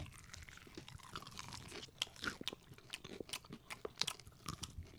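Someone bites into crispy fried chicken and chews, producing a rapid series of loud, irregular crunches with sharp crackling bursts and softer wet chewing between them, with no talking.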